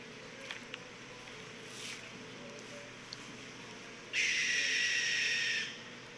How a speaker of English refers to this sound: There's a river over here. Maybe that's what it is. So that's what you hear in the background. But you're going to hear the owl come in and just let out a fucking blood-curdling fucking scream.